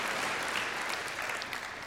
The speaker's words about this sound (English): Yeah, I mean, if we're going to clap, let's just clap.